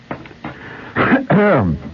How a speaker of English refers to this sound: Sorry about the cough. This cough switch doesn't work in here. So, yeah, there it goes.